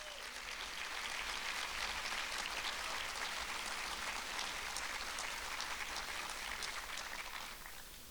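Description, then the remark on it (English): A crowd breaks into a round of applause, a dense, steady wash of many hands clapping at even loudness for about eight seconds before easing slightly at the end, applause thanking the CEO and staff of a history center. “Can we please give them a huge round of applause?”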